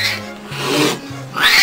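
A domestic house cat vocalizes up close, letting out loud, drawn-out, raspy yowling calls that rise and fall in pitch, with a brief dip between them.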